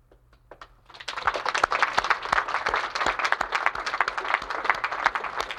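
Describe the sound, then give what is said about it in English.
A crowd's applause, given as a round of applause for God, starts after a second of near-quiet and carries on steadily, a moderate, somewhat subdued patter of many hands clapping without cheers or whistles. “Now that sounds to me like a round of applause for some cardinal in the Vatican.”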